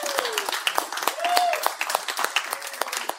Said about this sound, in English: I don't want to be the only one answering your questions. So give a round of applause to our panel.